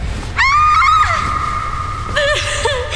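A woman screams in terror, one long, shrill, sustained shriek followed by a second wavering scream, loud and close against a faint low rumble.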